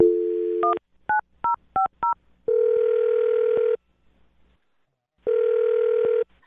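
A steady telephone dial tone cuts off into a quick run of four dialing beeps, followed by two long ringback tones separated by a pause of silence.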